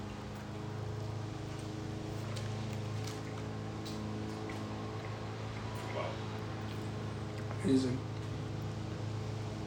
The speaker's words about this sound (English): This portion of the show is brought to you by John Deere, as you can hear by the ambient lawn cutting sound you hear.